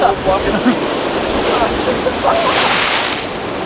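Ocean waves crash and wash steadily at sunrise under heavy cloud, with a louder surge of surf toward the end, while faint voices murmur in the background.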